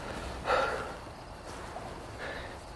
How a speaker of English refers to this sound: I can hear you breathing on the other end of the phone.